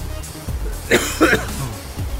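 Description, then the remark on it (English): Two short, raspy coughs follow one another quickly, fairly loud, with a low rumbling background and no talking, at the beach on a summer day. “I'm not coughing from exhaust fumes from cars because there's no cars at the beach.”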